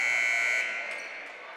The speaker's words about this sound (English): At the buzzer, let's see if they're going to call it the end of the quarter or they're going to call a foul.